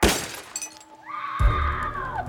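A sharp, loud burst of car window glass shattering with crackling fragments, followed by a sustained high wailing cry over a low rumble.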